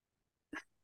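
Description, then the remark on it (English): A single short, loud burp bursts out, gruff and voiced, lasting only a moment before quiet returns. No one speaks. “What was that? All right, … burps.”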